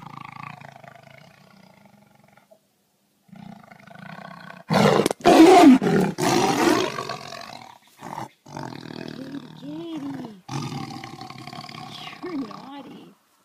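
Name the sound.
tiger roaring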